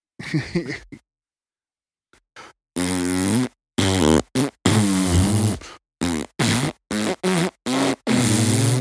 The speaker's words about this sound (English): That's the fart.